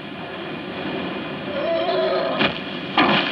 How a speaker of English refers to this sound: Here is some wind. Here is some more wind.